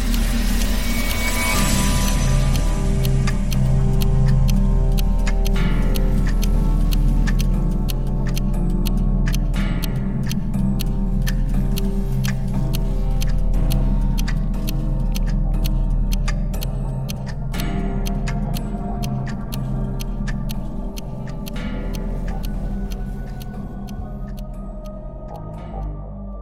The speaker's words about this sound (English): But at the very center of it all, ticking away quietly amongst 100 other noisy clocks, is an old German wall clock. The pride and joy of my collection.